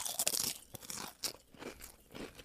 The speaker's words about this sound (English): The fact that I can't hear it pisses me off a little bit. I just crunched hella hard. Hold on, let me... Ew, oh god, even I heard it, I didn't like that.